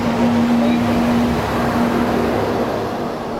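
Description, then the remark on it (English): A massive truck rumbles loudly past, its broad low engine roar steady for a few seconds before easing off slightly, with a faint hum running through it. “Yeah, we just had this massive, massive truck go by, and I missed the last part of what you said.”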